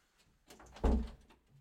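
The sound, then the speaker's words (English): A door swings shut with a single solid, low thud, preceded by a brief rustle of handling and followed by a short fading rattle. Moderately loud, with no voices. “I'm going to have to step off screen when people are watching because some motherfucker didn't shut the door.”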